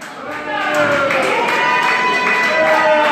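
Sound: audience applause and cheering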